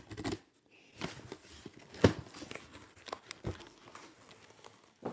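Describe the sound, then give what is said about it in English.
Rustling, tearing and crinkling of cardboard and paper as a shipping package sent from Adidas headquarters in Herzogenaurach is opened, with several sharp rips and scrapes in uneven bursts. “It's just, I'm not really set up for doing an unboxing here.”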